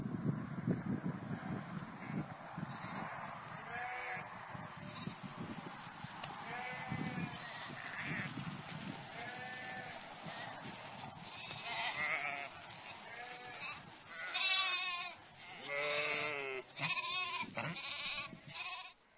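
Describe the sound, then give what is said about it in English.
Several sheep bleat outdoors, responding to their shepherd's voice, their wavering calls overlapping and growing louder and more frequent toward the end, over a steady rush of wind. “And I've got a different short clip now with some sheep responding to their shepherd's voice.”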